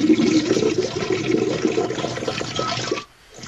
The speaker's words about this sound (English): The toilet still works, though. It's broke, but it works. Water on the floor now.